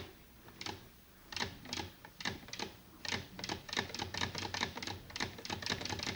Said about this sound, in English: Yeah, good, good, good, good. You've done it, girl. You know how to make a single thread chain on a sewing machine.